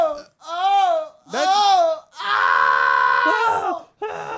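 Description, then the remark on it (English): Loud, anguished vocal cries from a person in pain come in three long bursts, wavering wails that give way to a harsh, rasping scream, strained, with brief gaps for breath between them. “I didn't think my guttural screams could be related to orgasmic.”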